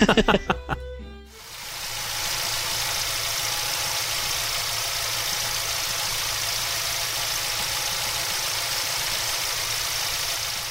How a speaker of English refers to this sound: but with a little doctoring, I was able to recreate a pretty close approximation of the Disneyland tram. So go ahead and play the engine sound. So this is like a Ford Focus at slow speed? Yeah.